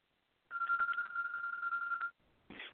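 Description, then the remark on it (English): A pet bird named Colby mimics a telephone ringing: one sustained, trilling electronic-style tone lasting over a second, then a short harsher chirp after a brief pause. Clear, with no talking. “Sorry, my bird was ringing.”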